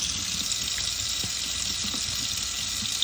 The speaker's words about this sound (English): This is now really hot water. Very, very, very hot water. Okay. That was, again, 3 minutes in there. Pour that directly under.